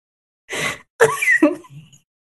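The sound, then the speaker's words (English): A single loud, breathy snort bursts out, followed right after by a second of rough, voiced throaty noises, almost like a stifled laugh, that trail off quietly. “I made myself snort.”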